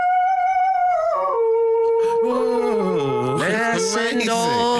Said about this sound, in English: First, there's an opera-singing dog called Nicholas.